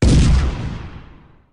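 One loud cannon blast goes off: a sudden deep boom with a sharp crack that rolls and fades away over about a second and a half. No voices are heard.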